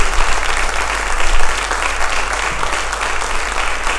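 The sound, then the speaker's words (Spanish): An audience applauds steadily for the King of Kings, a dense wash of many hands clapping together, loud and sustained throughout with no talking over it. “Vamos, denle un aplauso al Rey de Reyes.”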